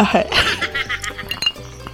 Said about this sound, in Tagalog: Iparinig natin sa Spotify na umiinom kayo.